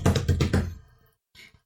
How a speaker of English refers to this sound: And then hammering. Yeah, so they can make like some kind of, mask, some kind of thing for it to wear.